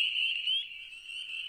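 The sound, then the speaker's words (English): A dense, continuous chorus of a very small breed of frog peeping at once in the woods at night, a shrill high-pitched trill that blends into a steady wall of sound with slight swells, no voices present. “they're like a really small breed of frog that, I don't know, there must be billions of them that live in the woods”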